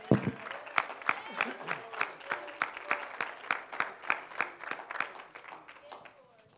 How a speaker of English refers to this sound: Give him a hand clap of praise this morning.